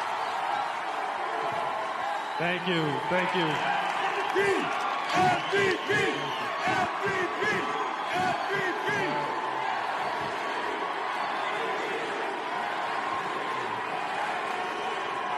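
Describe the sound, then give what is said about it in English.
A large crowd at the Juno Awards roars and chants "MVP" in steady, rhythmic repetitions for Connor McDavid as he goes up to present an award, with a man's voice speaking briefly over the continuous wash of cheering. “He couldn't even get going because the crowd MVP chants were going, and this is what happened.”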